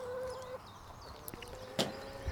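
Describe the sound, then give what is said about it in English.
Chickens cluck softly nearby, with a sustained tonal call and a sharper squawk near the end, set against steady outdoor background noise; no one speaks. “So I will ensure I go to the chicken shop today.”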